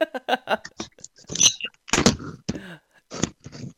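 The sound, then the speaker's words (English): A rapid, irregular series of clattering knocks and thumps as a bunch of items on a desk are knocked over, tumbling and hitting a hard surface, loudest in the middle then scattering into a few last bumps. “Yeah, I knocked a whole bunch of shit in my desk over right then.”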